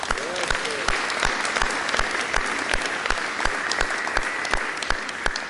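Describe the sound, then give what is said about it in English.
An audience claps steadily as a clap offering to the Lord, many hands blending into a dense, continuous wash of applause with sharper individual claps popping out at a regular rhythm, plus a faint murmur of voices underneath. “So in our joyous mood, I want us to give a clap offering to the Lord of hosts.”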